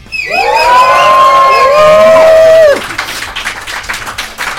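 A live crowd at Columbia University in New York City lets out a loud, sustained roar of yelling voices for about two and a half seconds, then drops off into noisier scattered cheering and clapping.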